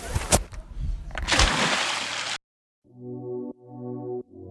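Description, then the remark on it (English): A loud splash of a boy who cannot swim falling into the sea, with sharp impacts and churning spray for about two seconds, then silence followed by three short, low musical chords. “He fell in the water.”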